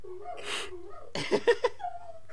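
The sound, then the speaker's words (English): Dogs bark and howl excitedly: a drawn-out whining howl, then a quick burst of sharp yelps and barks, and a thin rising whine at the end. Fairly quiet. “My dogs are going insane.”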